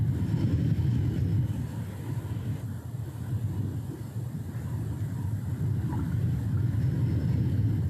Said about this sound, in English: You guys all hear that? It's a dust storm. See, that's a knowing sound.